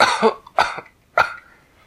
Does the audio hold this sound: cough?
yes